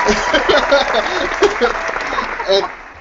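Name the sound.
applause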